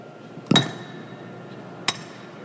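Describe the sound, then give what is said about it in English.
A champagne bottle smashes against the hull of the submarine USS Colorado at its christening: one loud, sharp crack with a low thud and a bright ringing that fades over a second, then a second quieter, sharp knock. The champagne was chilled with Colorado River water. “And that champagne for the occasion was chilled by Colorado River water flown in special for the occasion.”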